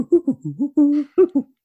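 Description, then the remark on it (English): A flute player imitates a mechanical owl's voice for a film: a quick, chattering run of short, breathy low hoots with bending pitch and one longer held note, fairly loud, with no talking. “we tracked down the guy who gave Bubo the Owl his actual voice, Adrian. He was a flute player.”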